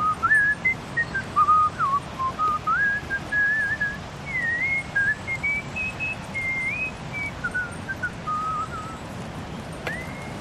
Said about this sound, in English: They whistled, like this man recorded in a park.